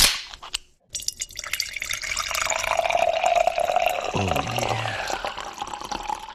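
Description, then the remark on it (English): A beer can cracks open with a sharp snap and brief fizz, then after a short pause beer pours steadily and loudly, foaming and gurgling for several seconds, with no talking. “This one's gonna explode.”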